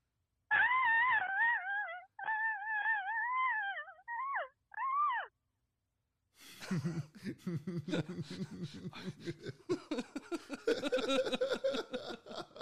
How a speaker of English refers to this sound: It's like a kind of gives me that like 1930s Betty Boop feel. Oh, yeah, this is a retro scream.